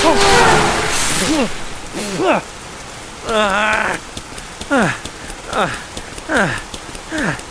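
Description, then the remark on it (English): Steady rain hisses throughout, heaviest at the start, while a series of short rising-and-falling voiced calls or whoops repeats over it. “Whoa, who rides their bike in the rain?”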